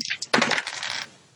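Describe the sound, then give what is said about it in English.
Glow-in-the-dark dice clatter onto a hard table, a quick burst of rattling clicks that tumble and settle within about a second, with no voices. “I need to get some sixes. I'm charging them up here.”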